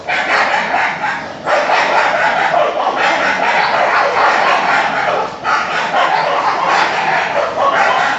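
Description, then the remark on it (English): Several dogs bark and yip at each other in a dense, nonstop racket, loud, with only brief lulls before the noisy back-and-forth picks up again. “Here's a video of dogs that are kind of barking at each other.”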